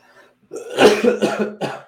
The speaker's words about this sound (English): I'm going to be coughing throughout this entire stream, so get ready, buckle down for it, make it a drinking game.